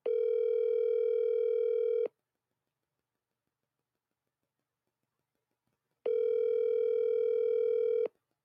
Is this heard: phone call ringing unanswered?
yes